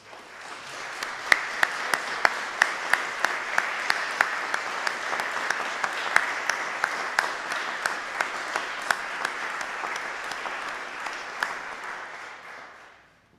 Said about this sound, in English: Can we give them and her a really big round of applause?